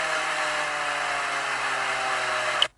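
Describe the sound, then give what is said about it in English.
A steady, loud engine exhaust drone from a BMW M4 Competition holds one pitch with a harsh, buzzy edge for under three seconds, then cuts off abruptly. No one speaks. “That is an BMW M4 competition.”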